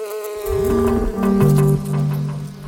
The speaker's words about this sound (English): Hornets will hover backwards and forwards with their eyes focused. And as soon as a bee comes past their sight line, they will aim to grab that bee.